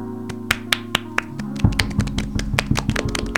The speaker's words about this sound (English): Are we going to end this all the time with clapping now? Yes.